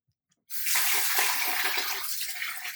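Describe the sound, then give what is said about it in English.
A tap turns on after a brief silence and hot water gushes steadily, a loud, continuous splashing stream that fills the rest of the moment without any talking. “Okay, all right, we've run it under hot water, we've got a dish towel, and we've hit it with a knife.”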